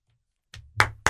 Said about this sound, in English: Golf clap.